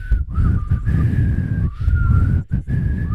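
Someone whistles the slow, sustained melody of a rock song, each note held and gliding into the next, with a few short breaks, over a steady low rumbling background noise.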